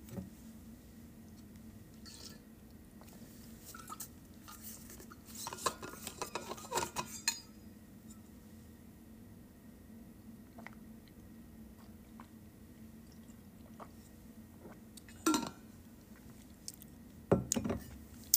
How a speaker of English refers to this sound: Just drank the rest of water, my Yeti. Great Yeti product here. Yeah, it took me a little bit there. I had to take the top off, whatever, unscrew it.